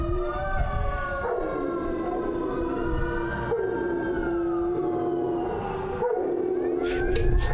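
A dog howls in long, wavering tones that rise and fall, overlapping layered howls filling the whole stretch, loud and continuous with no talking.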